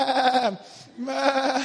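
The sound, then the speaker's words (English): A person imitates the bleat of a running sheep, two wavering, nasal "baa" calls with a short gap between them, loud. “I don't know what a sheep says when it's running.”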